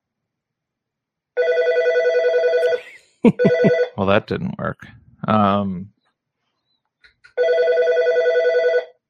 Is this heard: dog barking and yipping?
no